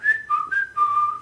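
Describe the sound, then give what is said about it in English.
A short whistled tune forming a song's chorus hook, four clear notes stepping between a higher and lower pitch, the last one held longer. Fairly loud, with no talking. “It was whistling, and the whole chorus builds up to the "You make me go," and then this really low key whistling.”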